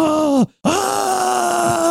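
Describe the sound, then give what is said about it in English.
A voice imitates a mis-mixed trailer for The Mummy that had only Tom Cruise's ADR screaming efforts: a loud, sustained groan that cuts off abruptly, then after a brief silence a second long, wavering yell with no words. “And it was just efforts and screaming.”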